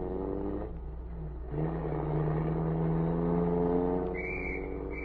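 A car engine revs and accelerates, its steady drone climbing in pitch as the general's car pulls away toward the border, with a shrill police whistle cutting in briefly near the end.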